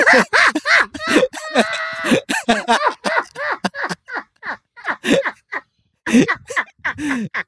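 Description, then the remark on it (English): A human voice imitates a duck, giving a string of short, nasal, loud quacks in quick bursts, with brief pauses between groups. “Quack, quack, quack, girl.”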